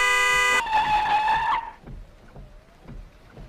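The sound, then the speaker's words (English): A loud truck horn blares in one long blast for about a second and a half, then cuts off, leaving quieter road and engine noise. “Watch out for that truck.”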